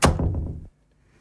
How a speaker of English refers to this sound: He saw the cloaked figure and quickly shut the door behind him.